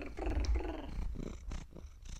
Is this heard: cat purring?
yes